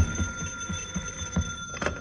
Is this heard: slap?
no